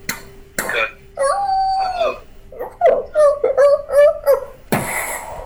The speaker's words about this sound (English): You hear like wolf howls and barking. Although you're pretty far off, so like you're hearing it echoed in the distance.